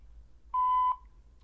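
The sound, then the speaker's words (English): A single clean voicemail beep on the voicemail line of Representative Donna Shalala, a steady mid-pitched electronic tone lasting under half a second, sounds clearly over faint low background hum, with no talking. “Record your message after the tone.”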